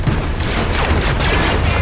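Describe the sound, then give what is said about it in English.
A loud, dense barrage of blaster fire: rapid, overlapping zaps sweeping downward in pitch over a heavy, rumbling explosion, with streaks of plasma punching through droid plating, sustained without a break for about two seconds, with no voices. “I slid down while hearing an explosion of blaster fire and that telltale sound of droid plating being punched through with streaks of plasma.”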